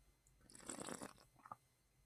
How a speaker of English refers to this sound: Taking a sip of my water.